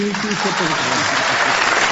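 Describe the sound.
An audience claps steadily in a dense, continuous wash of applause, with a voice speaking over the start before the clapping carries on alone, applauding to choose which song will be performed next.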